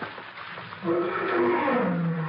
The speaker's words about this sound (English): What was that? Big cat out there somewhere.